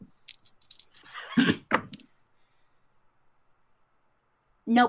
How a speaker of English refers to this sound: Okay, roll two dice then, and you're looking for a nine.